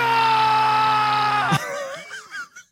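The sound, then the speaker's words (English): A grown man screams at the top of his lungs, a loud, sustained yell held for about a second and a half before breaking into shorter, wavering cries that fade out. “It's great when you isolate it because it's just a grown man screaming at the top of his lungs.”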